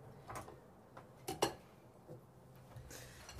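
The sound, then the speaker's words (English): A few sharp metallic clinks and clatters of a knife against dishes, with the loudest double strike in the middle and lighter taps around it. No one speaks. “Please stop using the knife that way.”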